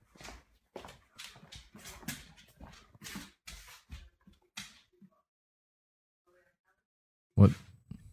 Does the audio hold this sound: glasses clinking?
no